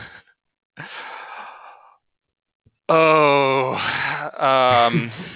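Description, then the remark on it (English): A person yawns during a job interview: a long breathy intake of air, a brief pause, then a loud, drawn-out voiced groan that wavers and trails off, with no talking around it. “I can yawn, I don't know that sets a good impression for me if you're yawning.”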